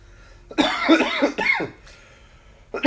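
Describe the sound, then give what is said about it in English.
A loud fit of harsh coughing: several raspy coughs run together, then a brief pause before another cough starts at the very end. No talking. “The coughing is not included, by the way.”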